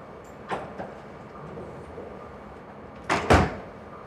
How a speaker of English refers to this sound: I'm going to close this door real quick.